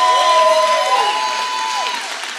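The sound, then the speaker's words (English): A church audience cheers and shouts praise loudly and steadily, with a few high whoops and sustained voices rising and falling above the dense roar. “Why don't you give him a praise like he deserves?”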